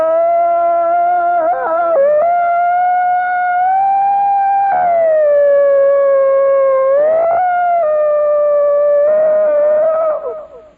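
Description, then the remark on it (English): A loud power holler: one voice holds a high, ringing note for about eleven seconds, wavering and dipping briefly a few times before it trails off at the end. “They call that power yodeling. That's called power hollering.”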